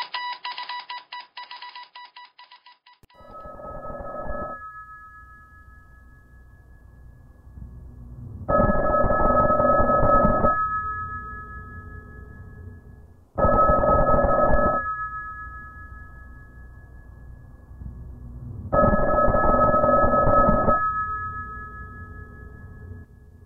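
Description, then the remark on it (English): An old-style telephone bell rings loudly at night in four long, jangling bursts separated by pauses of a few seconds, loud enough to carry through brick walls, with no voices over it. “A phone. Old school bell?”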